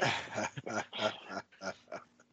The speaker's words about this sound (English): what do you got other than the dog on the bed that you're petting?